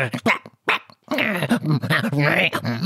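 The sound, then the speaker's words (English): A human voice mimics a puppy, whimpering and yapping in quick bursts, then breaking into a longer run of whiny, yelping barks, fairly loud. “Do you really expect us to understand that dribbly drool gibberish?”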